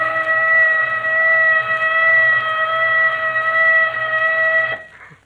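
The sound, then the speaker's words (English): A loud alarm whistle blows one long, steady, high-pitched tone with a rich harmonic edge, holding unbroken for nearly five seconds before cutting off abruptly. No one speaks. “Where's that whistle? Something's happened to it.”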